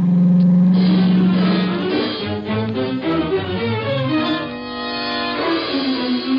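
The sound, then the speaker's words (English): A car engine hums steadily, then its pitch climbs and shifts as the car picks up speed, staying loud throughout with no voices; driving after dark to a farmhouse. “We left my car around in back of the house and went up on the porch.”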